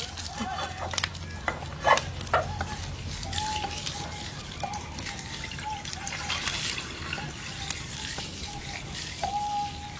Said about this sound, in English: He filled the pot with water, and soon the water was bubbling and boiling away.